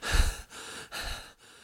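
A woman pants in quick, breathy gasps, four rhythmic breaths in a row, with no talking.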